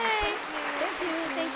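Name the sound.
applause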